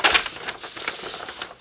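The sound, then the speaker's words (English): A quick, papery riffling of a deck of cards being shuffled, with a sharper burst of crisp flutters at the start and a steady rustling patter that follows, fairly soft. “Shuffle it up.”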